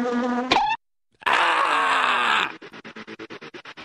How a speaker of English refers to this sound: Killer bees, man. They swarm you. You get near their nest and they get all cranky. I guess they don't have decaf honey in their hive. They're all pissed off. Get the hell off my land. They swarm you and sting you to death, man.